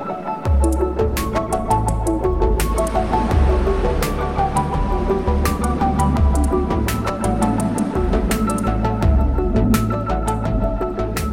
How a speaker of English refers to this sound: That sound, not the aeroplane, the waves, the sound of the waves and the birds around as well. It's just so calming, so soothing. It's lovely.